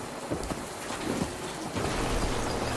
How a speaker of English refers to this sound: Well, it's raining out.